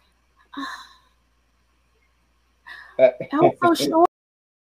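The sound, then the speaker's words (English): A quick, sharp intake of breath, a short startled gasp of recognition, followed after a pause by a person starting to talk. “Like, it just had, I was like, that's why you heard me gasp.”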